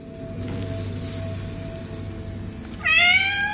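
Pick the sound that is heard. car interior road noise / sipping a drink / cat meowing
cat meowing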